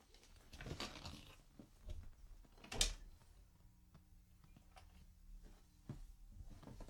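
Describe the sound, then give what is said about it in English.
A door is opened with a sharp clack near the middle to let a dog in, surrounded by soft handling thumps and faint rustling amid otherwise quiet, with no one talking. “Like, I gotta leave the door open because this little jerk is gonna cry about coming in, and then as soon as I let him in, he's gonna go out.”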